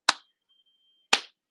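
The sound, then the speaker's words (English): Two sharp, crisp hand claps about a second apart, slow and deliberate, each with a short bright ring fading out, with silence between and no voices. “Slow claps get started different. Are they supposed to speed up?”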